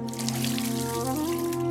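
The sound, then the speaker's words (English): Water pours steadily into a vessel, a continuous gurgling stream whose pitch climbs as it fills, with no voices; the water is for robed priests bathing a dead man's head at a funeral. “The robed Tlamakoski priests bathed Nezahualcoyot's head in cool water and carefully wrapped him in a bedroll made of woven palm reeds.”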